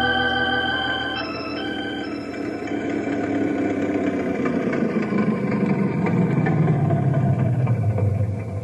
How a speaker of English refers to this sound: your old Model A sounds good as new. Yep, she sure does. When they made this car, they built them to last. Ain't much for speed, but she sure is dependable.